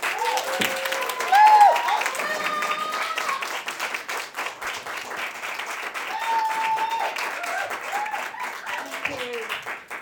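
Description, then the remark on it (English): A crowd bursts into a thunderous round of applause for a poet about to read, dense rapid clapping filling the whole stretch at steady loudness, with a few scattered voices and cheers rising briefly above it. “Can I please get a thunderous round of applause for a name that we've come to know and love,”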